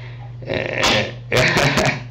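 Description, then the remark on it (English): A dog snorts and coughs, two rough, breathy bursts about half a second apart, loud over a steady low hum, with no talking. “And then my dog just snorted.”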